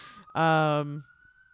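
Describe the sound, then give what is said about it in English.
An emergency vehicle siren wails steadily outside in a neighborhood by a hospital, broken by a loud, brassy horn blast lasting about half a second. “oh, look, sirens. We love sirens. This is the neighborhood.”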